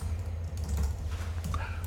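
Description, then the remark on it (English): A man typing on a computer keyboard: rapid, irregular clicking of fingers over a steady low background hum, with no one speaking. “He was typing on his computer.”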